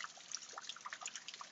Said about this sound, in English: Hey, I hope you guys hear the rain outside. In fact, I have my own beautiful, like, little waterfall, if you will. If you want to call it a waterfall.